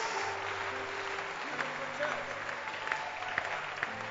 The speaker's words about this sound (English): Clap your hands.